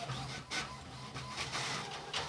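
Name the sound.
printer printing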